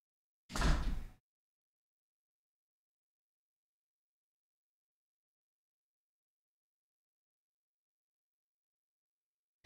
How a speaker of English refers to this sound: Close the fucking door!